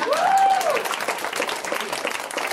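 An audience claps at the end of a joke, steady dense, crackling applause that holds at an even level throughout, and a short rising-and-falling whistle cuts through near the start.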